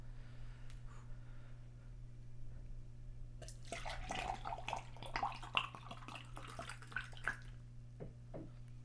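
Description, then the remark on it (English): A can of nitro beer is hard-poured upside down into a glass, a gurgling and splashing rush of liquid slamming into the glass that starts after a few seconds of low electrical hum and keeps sloshing to the end. “A nitro, you just turn that bitch directly upside down, and it just slams into the glass.”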